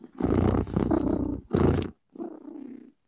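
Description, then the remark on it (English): A cat purring, a loud rumbling vibration in three bursts with short breaks between them, the last one softer. No talking. “I'm happy when I'm purring.”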